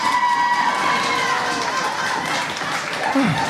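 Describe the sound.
At a poetry slam, a steady, loud wash of audience applause runs throughout as a poet is welcomed to the stage, with voices whooping and cheering over the clapping and a sliding shout near the end.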